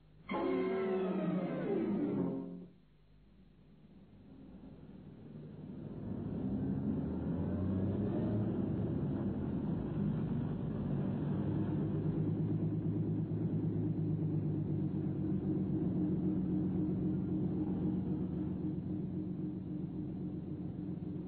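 A long, low Invicta motor car, overheating, idles in a traffic block on Tottenham Court Road in 1932; its engine gives a low, steady rumble, the drone swelling after a brief loud burst at the start and holding on, continuous, with no one speaking.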